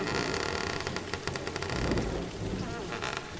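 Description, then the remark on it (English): Heavy rain pours in a steady, dense hiss, with a low rumble of thunder rolling underneath throughout, as a door is opened and people get drenched. No voices are heard. “We're getting a little drenched”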